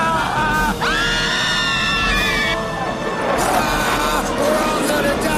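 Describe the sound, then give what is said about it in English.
Several high-pitched voices of elves scream and shriek together in panic, loud and continuous, with overlapping cries rising and falling over a noisy, chaotic background. “And I love the screams of the elves. Oh, yeah. They're just like, we're all going to die.”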